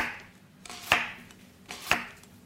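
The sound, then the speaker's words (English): A knife cuts an onion into large dice on a cutting board in a kitchen, two sharp, bright chops spaced about a second apart, each with a crisp knock, over a low steady hum with no talking. “Large dice.”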